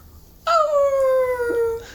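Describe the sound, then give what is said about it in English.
A person imitates a werewolf howl: a single sustained, mournful tone that starts abruptly and slowly glides downward in pitch for about a second and a half, loud, with no other talk. “Could you give us a werewolf howl?”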